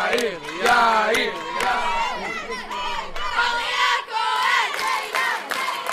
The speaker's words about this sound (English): The crowd is going wild. Rows of family members and classmates are cheering on 12 nervous-looking, pimple-faced teenagers on stage.